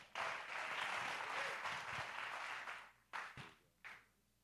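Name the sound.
audience applause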